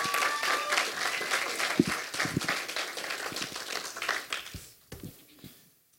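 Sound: round of applause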